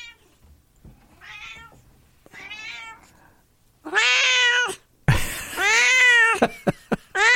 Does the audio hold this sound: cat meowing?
yes